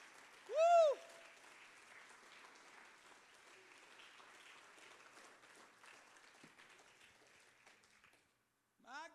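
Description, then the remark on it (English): A crowd jumps to its feet and claps its hands in a steady, dense wash of applause lasting several seconds, opening with a loud rising-and-falling whoop from a voice and ending with a brief vocal sound. “Let's jump to our feet, clap our hands. Come on, clap your hands.”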